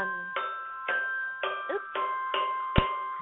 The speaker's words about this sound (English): I thought I'd put a little separation in there. Oh, okay. I thought it was someone's phone. I thought no. It's like the 15-second little musical bumper I found to try to make this all sound more professional, which right.